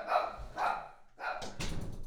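A dog barks several times in quick succession, loud, with a brief gap before the last few sharper barks. No one speaks.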